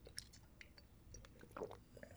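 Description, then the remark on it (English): Someone sips a drink: soft, scattered wet mouth clicks, then a brief slurping swallow toward the end. The sound is quiet and no one speaks. “Excuse me, I was taking a sip of my drink.”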